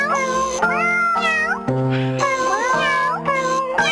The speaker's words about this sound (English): But I brought, you know, all the cats at my house. We got together, and they wanted to sing a little song.